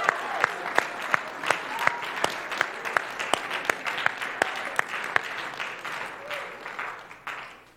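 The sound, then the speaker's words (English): An audience claps together in a steady, sharp rhythm, roughly three beats per second, over a busy wash of scattered claps that thins out toward the end. “Clap your hands.”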